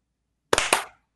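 A sharp, loud burst of hand clapping: two quick cracks a fraction of a second apart, blurred together like hands not quite in unison, with a brief fading tail and no voices. The clap lands on the count of eight, after the hands open on seven.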